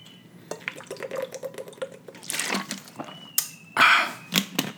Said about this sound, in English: Let me take a swig of this water.